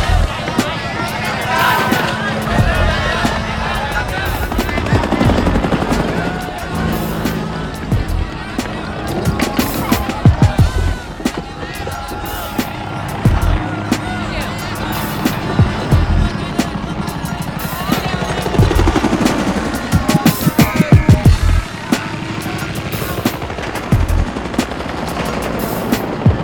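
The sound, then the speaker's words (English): Loud, dense battle noise: helicopter rotors of the First of the Ninth air cavalry drone steadily on the way to the Nung River in Vietnam while bursts of machine gun fire crackle in rapid, repeated volleys, with muffled shouting voices buried in the chaos throughout. “First of the ninth was an old cavalry division that cashed in its horses for choppers and gone terrassing around Nam looking for the shit.”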